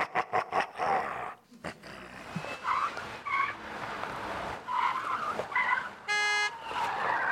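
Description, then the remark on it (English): A car skids past with sharp tire squeals rising and falling over engine noise, followed by a brief loud horn blast, all busy. “Watch it! Why do we even have cars here?”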